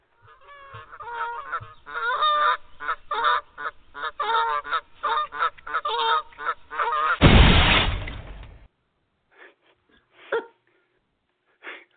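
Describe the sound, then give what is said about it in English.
A goose honks rapidly and loudly for several seconds, then a sudden harsh crash as it flies into the side-view mirror of a moving car, followed by silence and a few faint, scattered honks. “A goose flew into her side view mirror as she was driving.”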